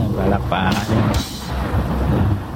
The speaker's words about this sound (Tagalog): Medyo napalakas yung ating sound effects. Kumikidlat-kidlat pa.